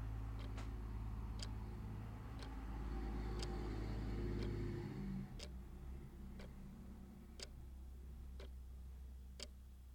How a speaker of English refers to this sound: There's a truck moving 1 mile an hour outside my window.